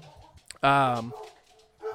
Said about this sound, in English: Sorry, one second. I don't want to have the dogs just barking over.